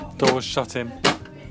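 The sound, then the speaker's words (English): A freezer door shuts with a single short, muffled thud partway through, while a voice talks around it, after garlic bread is taken out and a pizza is put back into the freezer. “Door's shut.”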